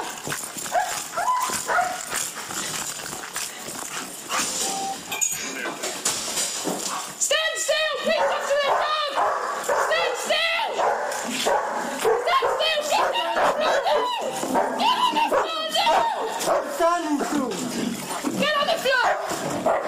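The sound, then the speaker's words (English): A police dog barks and whimpers as it tracks down a burglary suspect in a garden centre, with repeated high, wavering whines and yelps growing loud, especially through the second half, after a quieter, more scattered start. “but it's a canine. It tracks down a burglary suspect in Dobby's Garden Center.”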